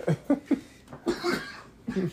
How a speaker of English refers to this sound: It's that weed cough right there, yo. That's that weed cough right there.